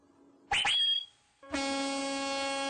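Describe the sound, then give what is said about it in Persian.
A car horn honks as a greeting: a brief loud double beep, a short pause, then one long steady blast that holds until the end. No one speaks. “فقط یه ایرونی میتونه با بوق ماشین هم سلام کنه، هم خداحافظی، هم فوش بده، هم تشکر کنه.”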